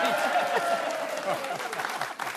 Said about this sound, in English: Spontaneous round of applause? Yeah.